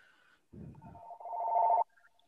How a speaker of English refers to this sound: Oh, sorry, my phone's ringing in the background, so I muted myself.